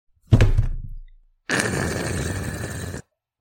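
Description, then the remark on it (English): A loudhailer is dropped as it is handed over, hitting the ground with a heavy thud that rings briefly, followed after a short pause by a loud, sustained electronic screech of feedback from the loudhailer lasting about a second and a half. “Bing bong had dropped the loud hailer as he handed it over to Sore Throat.”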